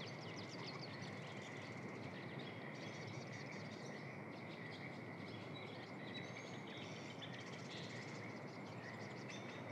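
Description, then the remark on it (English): A dense, unbroken chorus of frogs croaking from all around, layered with a steady high trill and scattered chirps, with no talking and no pauses throughout. “Let's sneak out into the middle of those frogs and see what it sounds like to be surrounded by them.”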